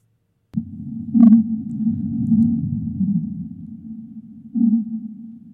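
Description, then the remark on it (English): Whale calls, originally around 17-20 hertz, sped up ten times to around 200 hertz: a continuous low droning tone with two brighter, louder swells partway through, steady and unbroken for several seconds with no talking over it. “So those are the whales, yeah.”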